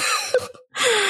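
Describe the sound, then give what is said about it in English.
A harsh cough bursts out, breaks off for a brief silent pause, then returns as a longer raspy, breathy rush of air. No one speaks. “Like, oh, I'm sorry. I coughed.”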